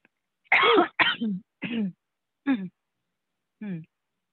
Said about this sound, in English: You know what? Cough. That'll help you get back in your body. Do a cough.